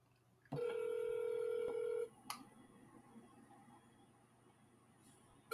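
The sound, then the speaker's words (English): A telephone call rings unanswered: a steady electronic telephone tone sounds for about a second and a half, then cuts off with a sharp click, leaving faint line hiss and room noise before another click at the end. “It's not like I expected him to answer the phone or anything, of course.”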